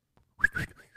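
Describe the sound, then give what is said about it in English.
Someone imitates a cricket hiding in a kitchen vent with a few quick, whistly chirps, a high thin tone that wavers between short bursts, fairly loud and on its own with no talking. “I was like, there's a cricket somewhere in my kitchen in a vent or something.”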